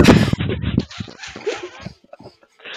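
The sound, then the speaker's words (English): A small dog gives a loud bark followed by a quick run of shorter yips and whimpering sounds, fading a little toward the end. “Many diners have reported hearing barking.”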